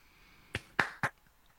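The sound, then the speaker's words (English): Three quick, muffled hand claps in a fast, even rhythm, thin, heard over a Zoom call that cuts out the claps, with no talking. “That's the worst clap I've ever heard.”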